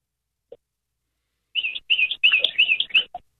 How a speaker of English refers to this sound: Oh, it's a bird.